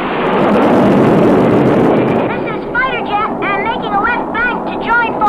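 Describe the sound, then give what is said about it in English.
The takeoff effect of an Ideal toy fighter jet: a loud, steady rushing roar for about two seconds, then wavering electronic tones that rise and fall in quick repeated sweeps over the lingering noise. “Flight leader to ideal fighter jet, clear for takeoff.”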